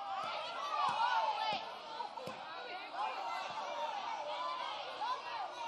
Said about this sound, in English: All right, why don't you just yell out your favorite desserts? Just go.